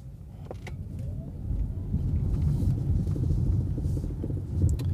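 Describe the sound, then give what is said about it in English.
An electric car accelerates hard in a crowded part of town, its low, steady rumble swelling louder after the first second and holding strong, with faint ticks and road noise over the top and no one talking. “Yeah, it just gave it a bit of the beans there. I mean, listen, this car goes.”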